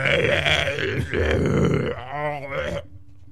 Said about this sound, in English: That's what happens when you drink beer. You cough when you smoke. I burp when I drink. Cause and effect.